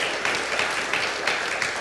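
A crowd gives the Lord a hand clap for almost 40 decisions for Christ made during a weekend, with steady, dense hand clapping that fills the short clip at an even volume, with small bursts poking out of the continuous patter.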